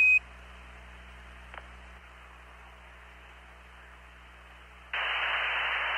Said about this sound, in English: And this great moment when the radio crackles and we get... Apollo 8, Houston.